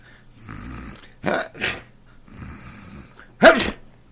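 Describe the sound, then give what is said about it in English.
A man sneezes loudly, a quick pair of bursts followed later by another sharp sneeze, with quieter low, droning sounds in between and no talking. “Gesundheit.”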